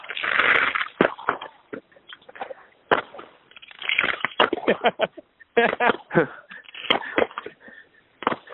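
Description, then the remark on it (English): Fireworks are set off in a park, crackling and banging outdoors in an irregular string of sharp bursts, some loud, others quicker and fainter, with voices faintly mixed in among the noise. “They're lighting off fireworks right here in the park.”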